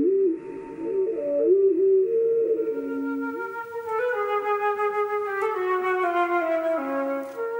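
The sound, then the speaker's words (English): Hermit thrush song, played slowed down in steps to half, quarter and one-eighth speed, heard as a steady run of rich, flute-like tones that step up and down in pitch, sounding lower and slower than usual, with no talking. “Oh, to be a hermit thrush for a day, to hear as they hear.”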